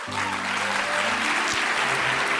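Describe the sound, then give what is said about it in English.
A crowd applauds steadily at the opening gala night of the Viennale Film Festival at the Gartenbaukino cinema in Vienna, a dense wash of clapping hands that stays loud and even throughout, with a faint low hum beneath it. “You can also stop holding the applause.”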